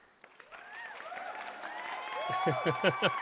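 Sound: clapping applause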